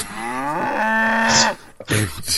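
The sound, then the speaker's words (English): A cow in the TV series Legion lets out a loud, drawn-out moo, its pitch sliding as it holds, followed after a brief pause by a shorter, rougher second call. “David tells him to keep an eye out for a cow.”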